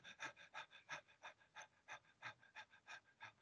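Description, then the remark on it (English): A person imitates a dog's quick, shallow panting as a breathing-exercise demonstration: a steady run of about fifteen short breathy huffs, roughly four per second, clear with no talking. “So the the deep breath, excuse me, the panting would, like we were talking about the dog pants, it's a very shallow.”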